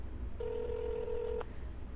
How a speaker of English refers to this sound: Okay, I'm calling him. This is a surprise call, huh?